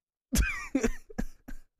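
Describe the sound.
A person lets out an exaggerated, theatrical coughing fit: about four harsh bursts in quick succession, the first drawn out and strained with a raspy voiced edge.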